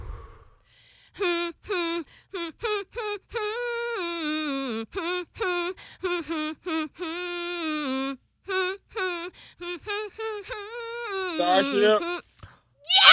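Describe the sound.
A person hums a song melody as a clue in the Hum Game, a song-guessing game. The hum comes in short, clipped syllables, the pitch stepping up and down in a steady rhythm with brief pauses, ending in a slightly rougher, strained stretch.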